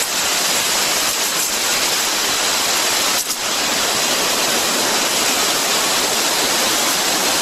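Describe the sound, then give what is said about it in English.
A steady, loud hiss of a high-pressure arborist sprayer (about 700 to 800 PSI) applying a foliar spray of seaweed and microbes runs without a break for the whole stretch, with only a brief dip partway through. No one speaks. “This is a special sprayer. It's called an arborist sprayer. It has I think it's a 700 PSI, 800 PSI.”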